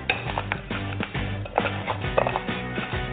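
Toasted peanuts being crushed in a pan to top a salad: a run of crunchy, clattering knocks in an uneven rhythm, with a steady tonal musical bed running underneath throughout.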